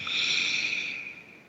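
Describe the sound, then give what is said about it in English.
A long, deep, airy breath, steady for over a second before gradually softening, with no talking. “So I invite you to take a moment and breathe.”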